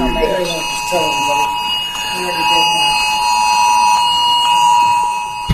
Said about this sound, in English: Ted Cruz's phone went off in the middle. And this is how that sounded, cut nine.